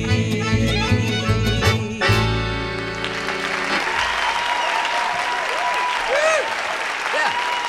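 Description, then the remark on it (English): A band's closing chord rings out and fades as steady audience applause swells up, a dense wash of clapping with a few whistles and cheers rising over it. “Oh, what a crowd.”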